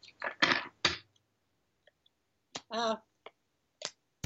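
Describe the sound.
Lenormand cards being shuffled and handled for a reading, a cluster of crisp, papery flicks and snaps followed by a few scattered taps and clicks, with a brief murmured voice in the middle.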